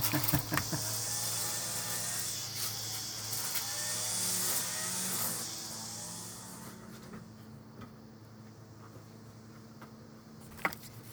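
A string trimmer, used by a landscaper for weed whacking about one foot outside a front door, whines with a steady, high, buzzing motor drone that holds loud for several seconds, then drops abruptly to a faint muffled hum, with a sharp click near the end.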